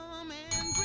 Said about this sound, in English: Oh, I heard a bell ring.